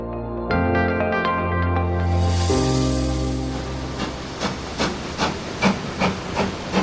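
Loud hissing steam fills a railway platform at the railway in Llangollen, North Wales, with a low humming drone early on, then settling into a steady rhythm of regular chuffing puffs; no one speaks.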